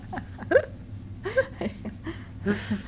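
A yawn right into the microphone: a few short, squeaky, whine-like voiced bursts with breathy edges, rising and falling in pitch. It is moderately loud, with no talking over it.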